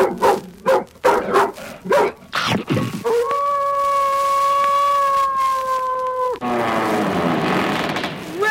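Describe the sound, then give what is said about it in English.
A dog lets out a quick run of five or six sharp barks, then holds a long, steady howl for about three seconds before trailing into a rough, grumbling whine. “Oh, I am so sorry my dog bit you.”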